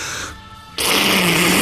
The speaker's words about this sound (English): Hang on, I'm going to blow my nose, okay?